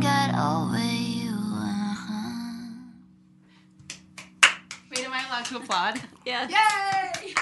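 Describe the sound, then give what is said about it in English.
A sung melody fades out, then a handful of sharp, irregular hand claps ring out, soon joined and overlapped by a lively voice speaking and cheering. “Applaud.”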